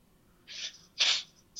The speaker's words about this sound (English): I got a little sniffle.